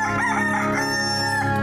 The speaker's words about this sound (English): I think you've got the essence of cockerel there